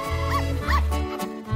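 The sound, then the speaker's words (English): A small Papillon dog barks and yips in quick, high-pitched bursts, two or three sharp, fairly loud calls, with no one speaking over them. “It's fairly clear that one such dog has not received the letter.”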